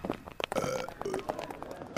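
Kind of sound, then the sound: human body sound, a belch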